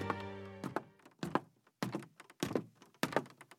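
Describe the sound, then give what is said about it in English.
Hollow, irregular thuds of light footsteps climbing wooden stairs toward an office door, about six steps, fairly loud, opening with a brief sustained tone before the first step lands; then a soft but urgent rapping on glass. “Light footsteps tap up the wooden stairs and approach the office door. A hesitation, then a rapping on the glass, soft but urgent.”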